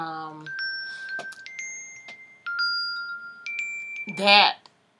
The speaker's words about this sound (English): And I don't even know if y'all hear that little beep and the ding, ding, ding thing, you know, it's my watch that I turned off my notifications when I started recording, but apparently my watch did not get the message.